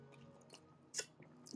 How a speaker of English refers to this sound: Let me just take a sip of water before I say this.